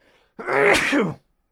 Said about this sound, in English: Someone sneezing